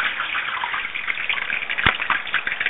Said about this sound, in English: My oil for deep frying is crackling and popping, so I'm gonna get those chickpeas in there.